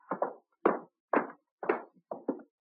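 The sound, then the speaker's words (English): A door opening, heard as a series of solid wooden thumps and knocks, some in quick pairs, alone with no voices. “Here's the door”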